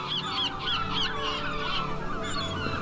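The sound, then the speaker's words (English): Seagulls call out in a quick series of sharp, repeated cries over a steady broad wash of crashing waves. “As you walk further, you begin to hear sounds of crashing waves of seagulls, and you smell salt in the air.”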